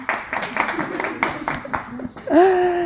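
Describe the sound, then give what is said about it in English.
A run of sharp hand claps, about half a dozen at uneven intervals, sounds over murmuring voices on a freezing day, made at the start of a recording to give a sync point for editing. A sustained, slightly wavering voice rises at the end. “Oh, I must clap when I start so that when he edits, there's a clap.”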